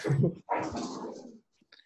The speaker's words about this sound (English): Sorry, my dog's in the background.